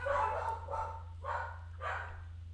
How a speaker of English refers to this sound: Okay. Dogs are barking.